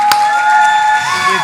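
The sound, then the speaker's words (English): An audience at New Chapel cheers and applauds loudly for people who accepted Christ that day, a dense, continuous wash of clapping and shouting voices with a few higher whoops rising above the roar throughout. “Hey, give it up for those people.”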